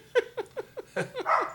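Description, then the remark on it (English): A dog reacting to someone honking a car horn lets out a quick run of about seven short, high, yelping barks in a steady rhythm, moderately loud, with no one talking. “Dog hear it. Yeah, the dog heard it.”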